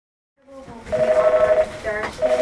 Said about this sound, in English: Last week, at a women's clinic in Houston, phones were ringing off the hook. Women were calling, desperate to get an appointment for an abortion.